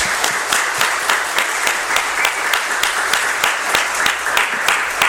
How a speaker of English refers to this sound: And I also would like to a round of applause and thanks